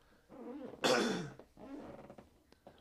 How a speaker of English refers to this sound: I'd also like to apologize for my sniff. I have a sniff, and then I think I have a throat clear. Completely unconscious of it until I listen to my podcast.